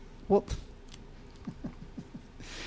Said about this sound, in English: So biscotti, it's a biscuit. It's a little drier than a cookie. But you look like you're not even remotely enjoying that. It requires a great deal of chewing.